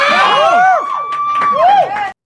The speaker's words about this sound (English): But the poignant part is the cheering, the whooping. They're excited.